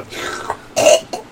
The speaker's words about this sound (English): The slurping sound grossed it out so bad. Oh, I couldn't even look away because it's still slurping and burping.